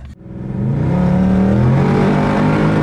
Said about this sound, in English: Yeah. We're in Dubai. Yep. We're driving around in this Mustang.